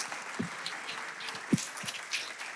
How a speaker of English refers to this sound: let's put our hands together and give a thunderous applause as we welcome Pastor Mo to the stage